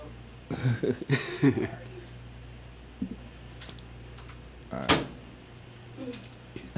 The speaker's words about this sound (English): What is happening right now? Oh shit, he's coughing.